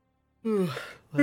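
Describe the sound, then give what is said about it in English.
A voice imitates a long, drawn-out yawn with a sliding, falling pitch, followed after a brief pause by the start of another yawning sound, fairly loud, as people yawn down an aisle around 6 a.m. “And just this cacophony of yawns just down the aisle.”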